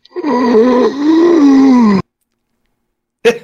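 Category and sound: human body sound, yawn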